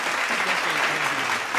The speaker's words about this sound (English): And I'm glad you went with the clap of like the only like two people clapping. And not like the one, which is a whole lot. I like that.